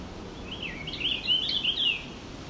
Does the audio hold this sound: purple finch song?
yes